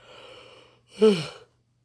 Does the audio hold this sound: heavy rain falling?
no